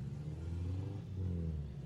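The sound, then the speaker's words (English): A car engine revs with a deep, throaty rumble, its pitch shifting as it accelerates past a roadside bench while leaving a car show, loud and steady for a couple of seconds with no voices. “So, we're sat here by the side of the road on a bench where all the cars are, like, driving by as they're leaving the show.”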